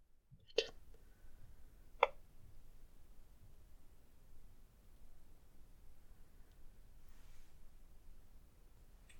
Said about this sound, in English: Yeah. There's very clear footsteps.